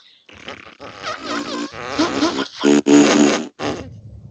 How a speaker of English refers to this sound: This van farts.